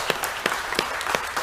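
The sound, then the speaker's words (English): An audience applauds the mothers, who remain standing, before a sermon: a steady wash of many hands clapping with a few sharper, louder claps standing out at an uneven rhythm. “I just want to take time before we get into the sermon and just give y'all a round of applause.”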